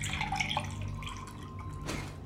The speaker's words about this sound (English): Will you pour me some water, please? Of course, my queen.